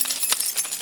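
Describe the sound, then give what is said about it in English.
A bunch of keys being shaken, giving a bright, continuous metallic jingle with several quick clinking bursts over under a second, heard alone without any talking. “So, man, sometimes I walk around and just shake my keys because I can't.”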